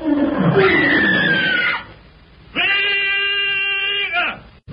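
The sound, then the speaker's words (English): A lion, Numa, roars twice, loud, as it attacks a man: first a rough, growling roar, then after a short pause a long, sustained, steady roar that cuts off abruptly. “Magra has strayed from the line of march and is attacked by a lion. At Numa's earth-shaking roar, Tarzan leaps upward, grasps the trailing vine, and flashes through the branches with breathtaking speed toward Magra.”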